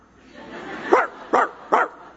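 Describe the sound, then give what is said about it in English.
A human voice imitates a dog barking, giving three short, sharp woofs in quick succession, evenly spaced, following a rising growl-like build-up. “I can bark. Sometimes I can sound like a pretty good dog.”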